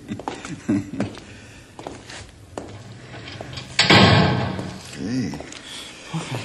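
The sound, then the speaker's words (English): A heavy door swings shut and is secured with a solid, broad thud and a brief rattle of hardware, while people talk before and after. “You take no chances with that door, do you”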